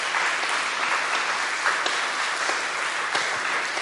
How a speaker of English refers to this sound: Give them a round of applause for their birthday.